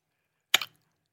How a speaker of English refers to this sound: I've got so many cookies stuck in my mouth right now. Yeah. You're getting that really delicious, chunks in the corner of your mouth. Yeah, but it's a slow drip. Mm. Just like a slow cookie. Mm-hmm. Yeah. I get a crumble every now and then.